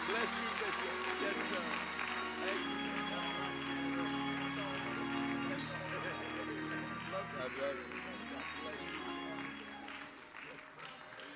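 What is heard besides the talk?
audience applause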